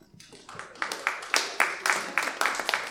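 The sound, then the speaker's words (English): Audience applause at a Circle of Hope gathering as a speaker is called up: a steady run of crisp, rhythmic claps that builds up over the first second and then holds at a moderate, even loudness. “Well, you should save your applause until I'm done.”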